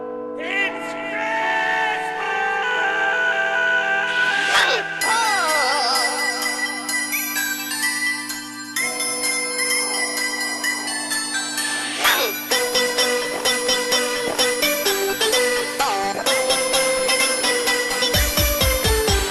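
An artist's version of Jingle Bells plays loud and steady, a bright, bouncy synth melody over a pulsing electronic beat, with chirpy vocal-like synth sounds and sweeping effects throughout.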